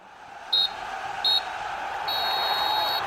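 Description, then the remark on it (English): A referee's full-time whistle: two short, shrill blasts followed by one long sustained blast, high-pitched and piercing over a steady wash of crowd noise. “Well, there goes the full-time whistle.”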